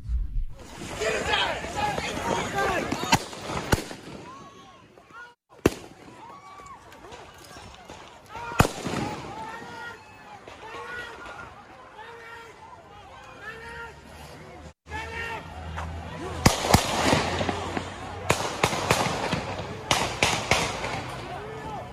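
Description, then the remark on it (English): Sharp real gunshots crack out over a noisy street crowd in Kenosha, Wisconsin, a few isolated bangs followed by a denser burst of shots near the end, with shouting and chatter continuing throughout. “Those are real gunshots.”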